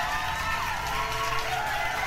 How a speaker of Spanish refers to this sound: Un pinche aplauso para todos ellos.